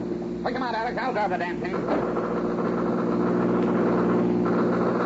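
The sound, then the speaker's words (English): A car engine roars steadily at speed during a chase, a loud continuous drone running the whole time, with a raised voice briefly cutting over it near the start. “keep the car in the road.”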